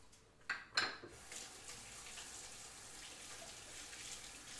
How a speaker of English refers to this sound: All right, so my hands are chickeny. I'm just gonna rinse them real quick.